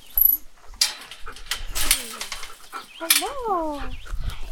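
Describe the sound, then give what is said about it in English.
Sled dogs whimper and whine in a few high, wavering cries that rise and fall, with scuffling and rustling noises between them. “Well, actually, he's one of my lead dogs, so he's...”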